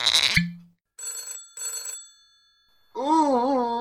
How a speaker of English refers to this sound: What on earth is that sound? Miss Edson, are you some bumpkin who's never heard the ringing of Alexander Graham Bell's creation, the telephone? Why is it coming from inside the president?